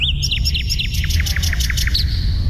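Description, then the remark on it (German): A nightingale sings a rapid series of bright, repeated whistled notes, clear, over a steady low rumble in the background. “Die singende Nachtigall.”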